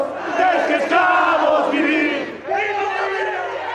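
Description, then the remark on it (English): A large crowd of opposition protesters cheers and shouts loudly and continuously as Evo Morales steps down, many voices overlapping in a sustained roar with rising yells, a brief dip, then the cheering surges again. “Later in the day, he stepped down, prompting cheers from opposition protesters.”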